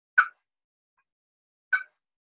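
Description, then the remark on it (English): Two sharp, short turkey clucks made on a Timber Freak slate call, spaced well apart with silence between them, moderately loud. “Now, how about a cluck?”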